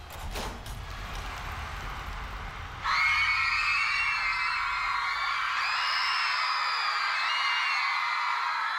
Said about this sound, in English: So the idea is that they're screaming too loud so you can't hear him.